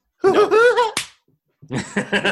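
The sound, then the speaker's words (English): A single sharp, loud slap sound effect, evoking Mickey slapping people in the game Kingdom Hearts, cracks out right after a drawn-out vocal exclamation, followed by a brief pause and then bursts of laughter. “Does it just Mickey giving people a bitch slap?”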